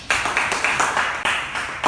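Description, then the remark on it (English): A crowd applauds a DJ steadily, many overlapping hand claps forming a dense, bright wash of sound that holds at a fairly even loudness for a couple of seconds. “Let's clap for our DJ.”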